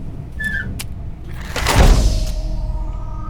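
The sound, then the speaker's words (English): A heavy soundproof door grinds and slides as it is sealed shut, ending in a deep, resonant thud as it closes, with a short metallic squeal near the start and a low rumble underneath. No one speaks. “It is once we seal the door. Which we should probably do about now.”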